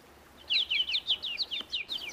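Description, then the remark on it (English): Birds chirp in a quick, steady series of bright, high-pitched notes, repeating rhythmically for about two seconds at moderate volume against a quiet outdoor background, on a restored prairie on a lakeside peninsula in Chicago. “Birds, bees, and purple coneflowers are my workmates.”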